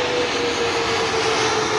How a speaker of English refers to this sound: Like, whoop, incoming plane! Incoming plane!